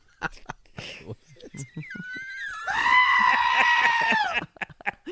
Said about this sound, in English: Oh, is that the goat again?